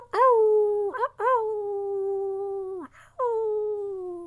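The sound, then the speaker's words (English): Three long, sustained wolf-like howls from a human voice, each rising at the start and sliding down at the end, separated by short breaths, fairly loud with no talk. “Go ahead, guys. Throw in a wolf howl for me there.”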